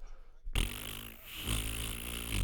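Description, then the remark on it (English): A loud, buzzy fart sound starts abruptly after a brief silence and keeps rumbling for about two seconds, with a low, rattling tone that wavers slightly before swelling again at the end. “Sorry for farting your ear, but I don't know.”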